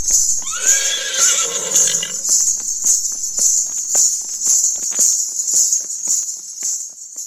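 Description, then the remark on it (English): A horse whinnies loudly for about two seconds, its neigh rising and falling, followed by soft rustling and a steady drone of crickets or insects in the background. “One woman, one horse, one goal, 48 states for domestic violence awareness.”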